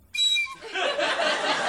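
A short, bright, high whistle note rings out steadily for a moment, then dissolves into a loud, breathy, hissing rush of air with no clear melody.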